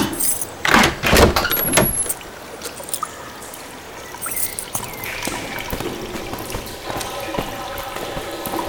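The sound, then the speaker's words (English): Keys, got from the reception to open up the park toilets, jangle and clink, with a couple of loud rattling bursts at the start and lighter metallic jingling continuing intermittently afterward. No one speaks. “I slammed the car door and got the keys from the reception to open up the park toilets.”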